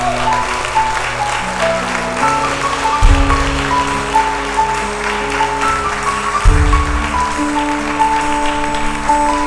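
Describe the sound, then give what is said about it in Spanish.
A church audience applauds loudly and steadily throughout a service, a dense wash of clapping over sustained organ or keyboard chords, with two heavy bass thumps punctuating the noise. “Si le va a dar un aplauso, dáselo fuerte.”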